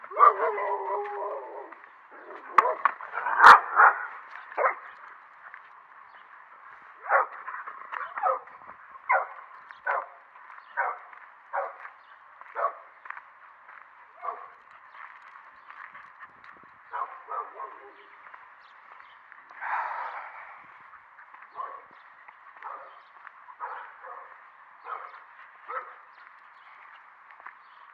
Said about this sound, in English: Cue the barking. Oh, not yet. How weird. Now? Yeah. Dog.